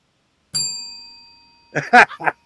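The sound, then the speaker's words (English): A single bell is tolled once, ringing out clearly with a long, shimmering decay that fades over about a second before someone briefly talks or laughs. “I was tolling the bell for Ganja Greg, the ghost of Ganja Greg, who also never came back.”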